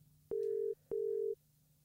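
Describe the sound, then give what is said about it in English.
A phone ringing tone sounds a single double pulse: two steady, mid-pitched electronic beeps of equal length, separated by a short gap, clear and prominent over a faint low hum, with no one speaking. “My phone is also ringing too, but I think this is unrelated.”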